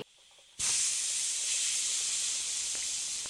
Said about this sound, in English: All you have to do is bend the hatch off this steam pipe. No good, it's full of steam!